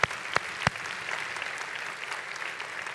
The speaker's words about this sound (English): Come on, put your hands together and let's give Jehovah God a clap offering.